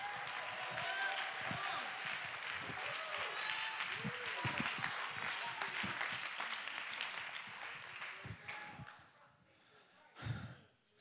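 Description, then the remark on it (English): A church audience claps hands in a dense, steady burst for about eight seconds, with voices calling out over it, before the applause thins and fades away. “Somebody go ahead and clap your hand.”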